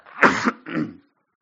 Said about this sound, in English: So, I'm going to cough because I still have the residual cough from my allergies.